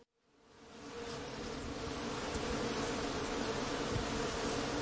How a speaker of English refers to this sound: This lovely buzz is brought to you by bees active in a blossoming apple tree down the road from Wild Yarrow Farm on New Turnpike Road in Coshecton, New York.